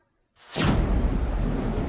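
A thunderstorm roars over a stormy sea, swelling quickly out of silence into a loud, continuous rumble of wind and crashing water, with no voices present.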